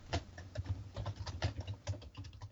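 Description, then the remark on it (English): Rapid, heavy typing on a stealth computer keyboard, with a steady clatter of sharp key clicks and thumps and no voices. “Sorry about the thunderous typing, folks.”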